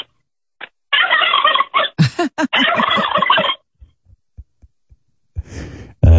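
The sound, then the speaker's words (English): A turkey gobbles over the phone in a loud, rapid, warbling burst lasting a couple of seconds, followed by a handful of soft, low thumps and a short rough rustle at the end. “There's a turkey on the phone that wants to have sex with you.”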